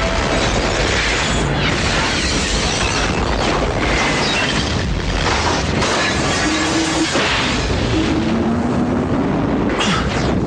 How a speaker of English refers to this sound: He's constantly running in this picture, first away from that explosion at a laboratory in a converted Chicago steel mill.